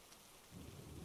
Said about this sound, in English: Relax. Sit back. Listen to the rain. Let it speak to you today.